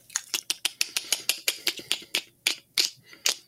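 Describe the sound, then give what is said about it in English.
A person does a vocal impression of the distinctive clicking noise of the mandibles heard in a film: a quick run of sharp, dry, high clicks, around sixteen in all, coming in rapid bursts with a few brief pauses and no speech. “But yeah, they're the same mandibles that you can hear in the film, sort of making the distinctive sort of clicking noise.”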